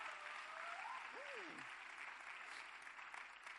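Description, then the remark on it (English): Steady, dense applause from an audience clapping for a group of lay pastors fills the whole stretch, a continuous wash of many hands clapping, with a brief vocal sound rising over it early on. “Now you can clap for them.”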